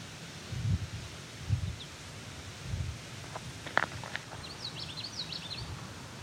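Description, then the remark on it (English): Wind stirs through leaves in a steady outdoor rustle, with a few low buffeting gusts, a couple of sharp snaps, and faint bird chirps in the background. “We have a gust of air here.”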